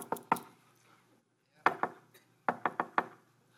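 Sharp knocks on wood tapped out in a patterned secret-knock rhythm: a quick cluster of three, a pause, a pair, then a final run of four. They're crisp and heard alone.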